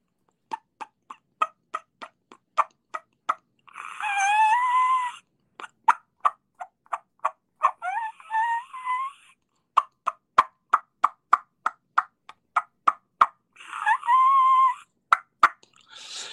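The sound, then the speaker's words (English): A diaphragm turkey call imitates a hen's mating squeal: fast runs of sharp, clucking clicks broken by three high, wavering squeals that rise and fall, loud and with no talking. “I'll do it with a diaphragm. And again, it's prior to the mating squeal of the squealing hen.”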